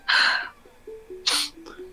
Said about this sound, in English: I love the sniff just to hold it back. I'm like, I can't believe you're embarrassing me in front of everyone like this.